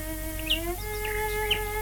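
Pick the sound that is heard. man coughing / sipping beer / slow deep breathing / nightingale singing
nightingale singing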